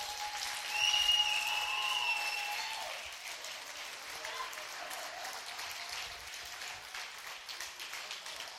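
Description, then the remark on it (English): An audience gives a hand clap for the Lord in sustained, dense applause, loudest at first and then settling into steady hand clapping for several seconds, with faint voices mixed in. “Get a Lord a hand clap.”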